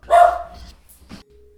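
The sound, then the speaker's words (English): A dog named Nelly lets out a loud, sharp bark, followed a moment later by a second shorter, quieter bark, then a faint steady hum. “There he is. There's my sweet dog.”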